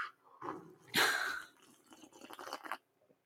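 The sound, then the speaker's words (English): A loud slurping sip of hot coffee from a mug, a sharp airy pull followed by a few seconds of softer wet swallowing and mouth sounds, with no talking. “Okay, now everybody with me, ready? Big sip of coffee.”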